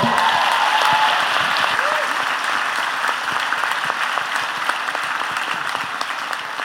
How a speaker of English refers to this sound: Actually, can we give her a round of applause?